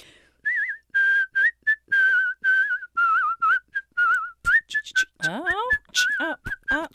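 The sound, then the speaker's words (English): A person whistles a slow, eerie film-soundtrack-style melody, with held notes and small trills. Toward the end the tune breaks up into clicks and swooping, wavering pitch slides. “whistling with orchestras or doing film soundtracks”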